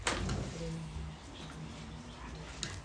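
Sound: door being opened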